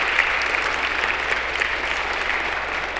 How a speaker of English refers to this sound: Thank you to our friends in the back for joining us. Can we give them a round of applause for joining us today?